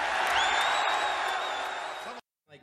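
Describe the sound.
A huge arena crowd roars with cheers and piercing whistles after Stone Cold's 'Austin 3:16 says I just whipped your ass' line. The roar is loud and sustained for about two seconds, then cuts off abruptly before a man starts talking.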